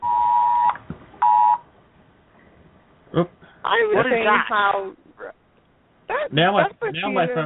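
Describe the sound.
A phone's emergency alert tone for a flash flood warning blares in two loud, harsh bursts, a long one then a short one, followed by people talking.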